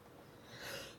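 A single soft sneeze, a breathy hissing burst that swells and cuts off abruptly, fairly quiet, with no talking around it.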